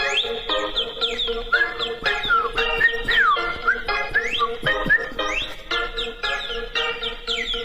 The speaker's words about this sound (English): All right, so I will go ahead and bid everyone adieu with the official bird outro. Here we go.